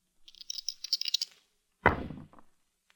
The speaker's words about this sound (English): All right. Roll the dice.